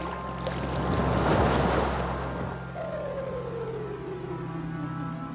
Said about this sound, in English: I'm standing in a tub, a white tub, and there's water pouring over me. I'm standing under a shower head.